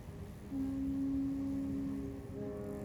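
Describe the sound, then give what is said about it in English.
Fritz's foghorns sound a long, steady, low-pitched blast for about a second and a half over a rumbling background, then a second horn tone follows at the end, in the stereo noir story Nightmare on Stool Pigeon Street. “You'll hear Fritz's foghorns.”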